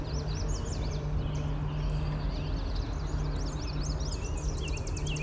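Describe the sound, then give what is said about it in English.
A Tennessee warbler and red-winged blackbirds sing in overlapping trills and high chirps throughout, recorded on an iPhone without an external microphone, over a steady low hum and rumbling outdoor background noise as a car goes by. “There's a Tennessee warbler. Red-winged blackbirds.”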